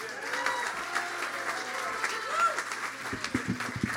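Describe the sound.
A crowd applauds steadily for several seconds, a dense, even wash of clapping with scattered cheers and whoops rising above it, before a voice begins speaking as it continues.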